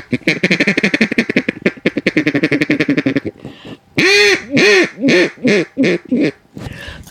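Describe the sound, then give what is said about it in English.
A duck call made by Jordan Calls, from Mississippi, being blown: a rapid run of raspy quacks, then a pause and a series of longer, drawn-out honking quacks, loud with no talking over them. “I love duck calling.”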